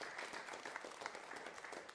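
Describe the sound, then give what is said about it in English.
A church audience applauds its giving toward a family's travel to a funeral, many hands clapping in a dense, steady wash of sound that stays fairly loud and even throughout, with no voices rising above it. “This is where you should clap.”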